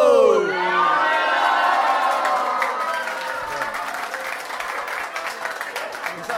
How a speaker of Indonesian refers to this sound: Yel-yel Bujangers. Yeah. Oke, okay, kita teriak sama-sama ya. Oke. Okay. Okay. Mau jawab yang kenceng ya.